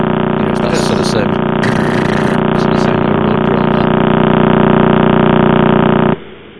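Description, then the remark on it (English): A recording of a pulsar, the collapsed remnant neutron star of an exploded star, rotating about 30 times a second: pulses come so fast, about thirty thuds a second, that they blend into a loud, steady, road-drill-like buzzing drone, holding about six seconds before abruptly dropping away. “So you go, thud, but 30 thuds a second.”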